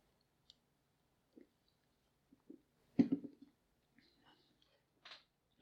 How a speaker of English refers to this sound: First, I want to get another sip off my Coke here.